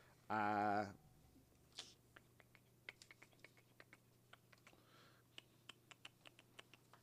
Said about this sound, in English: If you're wondering why I'm clicking my tongue, it's because I'm flipping through the other pages trying to figure out where Chronic's going to show up.